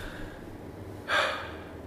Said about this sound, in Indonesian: Wah, ada yang ngorok lagi.